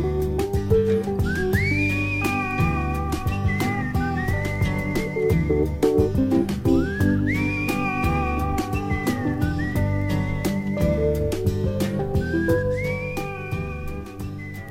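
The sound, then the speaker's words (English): The singer whistles a clear, wavering melody over a full band accompaniment at the end of a song, the tune rising and sustaining in repeated phrases as the music plays steadily underneath. “… whistling his way out of …”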